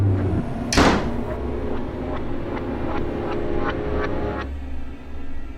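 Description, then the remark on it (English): A front door slams shut behind someone bursting out of a house into the front garden, with one loud, sharp bang near the start, followed by a steady series of faint ticks over a low background rumble. “And the door slams behind you.”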